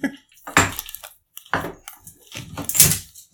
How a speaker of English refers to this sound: Oh, wait, I can still open the bottle though. Can you? Nah.